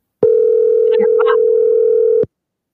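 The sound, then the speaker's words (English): A steady, loud telephone dial tone hums for about two seconds before cutting off abruptly, with a few faint clicks and warbles briefly audible over it. “I think we have her on the phone now.”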